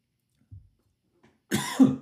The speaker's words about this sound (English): Fucking coughed anyway. Didn't help at all.